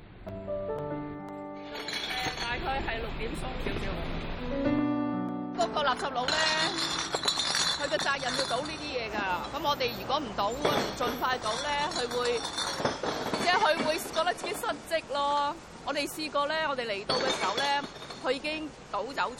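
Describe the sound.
Glass bottles clink and clatter against one another in a busy, irregular stream of sharp, bright knocks as drink bottles are collected from bar areas in Hong Kong, with voices and a brief tonal passage at the start underneath.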